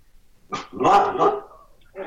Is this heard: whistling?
no